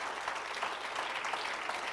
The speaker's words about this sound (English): Oh, come on, clap your hands unto the Lord.